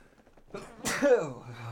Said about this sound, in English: Sneezes.